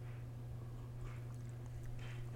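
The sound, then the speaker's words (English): Three soft, brief slurping sips of hot tea, spaced about a second apart, over a steady low electrical hum with no talking. “I got a little bit of tea, so pardon me taking a sip or two.”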